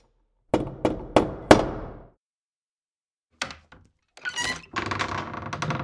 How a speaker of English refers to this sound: Knock on the door